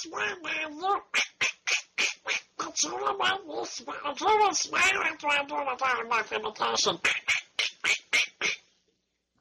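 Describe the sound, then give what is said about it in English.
A person does a Donald Duck impersonation, a rapid stream of raspy, squawking, garbled syllables delivered loud for several seconds before stopping abruptly. “Why don't you do a Donald Duck impersonation?”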